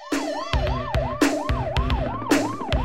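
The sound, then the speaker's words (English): A fast yelping police siren rises and falls in quick repeated sweeps, loud and continuous, laid over a song's heavy rhythmic beat of punchy thumps and crashes, with no voices. “Not only do the police come, but there's a helicopter.”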